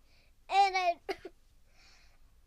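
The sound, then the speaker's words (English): A short fit of coughing: a drawn-out, throaty voiced cough, then two quick rough hacks and, after a pause, one last sharp cough. No talking. “Oh, sorry for the coughing there.”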